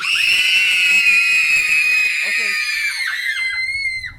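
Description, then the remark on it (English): Several voices let out a loud, sustained high-pitched scream together for about four seconds, holding steady before wavering and trailing off near the end. “Screaming accomplished.”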